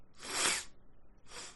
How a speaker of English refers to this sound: I'm trying to sniffle bravely. No, because the sniffling sounds weak and pathetic. You can't sniffle bravely.